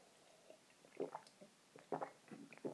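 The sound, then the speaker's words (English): Quiet slurping and swallowing sounds of someone sipping a cup of hot tea, a few soft wet gulps spread over a couple of seconds with no talking. “Excuse me, I'm going to have a quick sip of my tea.”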